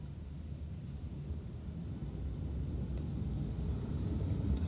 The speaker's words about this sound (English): Got two cars coming by.